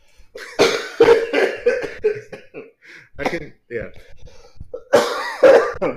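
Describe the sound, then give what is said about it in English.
A person coughs repeatedly, with harsh bursts clustered near the start and again at the end, separated by throaty vocal noises and muffled talking. “we can get through a podcast without you coughing, No.”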